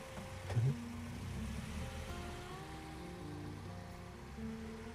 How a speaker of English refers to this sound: The truck starts and the headlights turn on.